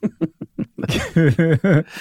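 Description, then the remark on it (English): Someone clears their throat after eating garlic chicken: four quick, gruff low bursts, then several louder voiced, rasping pushes in a steady rhythm, with no words spoken. “Sorry to clear my throat.”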